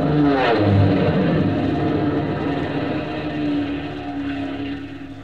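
A propeller airplane, an AT-6 flown by T.W. Conway, roars by low overhead in a buzz job, its loud engine drone sweeping in pitch as it passes, then fading slightly while still buzzing steadily.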